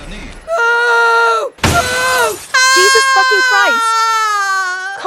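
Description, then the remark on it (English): A burst of breaking glass and crashing debris as furniture is thrown through windows 30 stories up cuts through loud, strained wailing and shouting voices that hold long, high-pitched cries before and after the smash. “You throwing furniture through the windows could become a story.”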